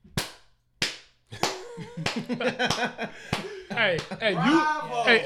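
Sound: hand clapping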